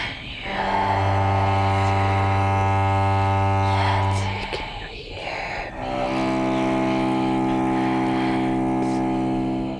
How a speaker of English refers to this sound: And it developed a voice, and it spoke in low tones. Some people likened it to the sound of a musical instrument, a cello, when it was content.